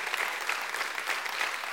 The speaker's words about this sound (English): Would you please stand just so that we could recognize you? We won't make you come up and share a speech or anything, but let's just give them a hand and a round of applause and say thank you.